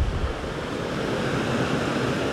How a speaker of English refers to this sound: The rivers are flowing today. If you can hear that.